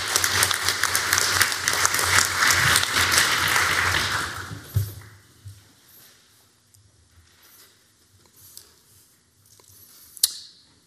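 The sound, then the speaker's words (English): An audience gives a final round of applause to thank the host for the opportunity and the venue. Many hands clap in a dense, steady burst for about five seconds, then the clapping quickly dies away, leaving faint scattered taps and rustling. “So if we could just have a final round of applause to thank you, that would be very nice.”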